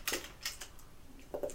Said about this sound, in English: I'm going to use those dice. I use some different pink dice.